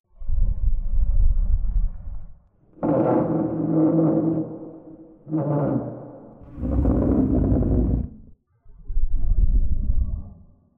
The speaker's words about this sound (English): Notice any similarities? The second batch of sounds was furniture being moved.